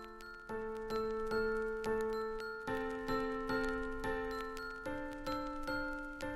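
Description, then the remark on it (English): A short musical intro jingle with bright, sustained chords pulsing on a steady beat, shifting chord twice over several seconds, played up close and fairly loud with no voices. “Then after the jingle, we're going to go straight into the chat of Sean's origins in the industry”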